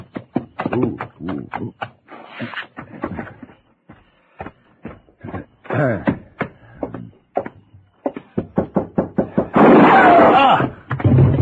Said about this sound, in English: It was a gunshot, Aunt Lola. I know it was.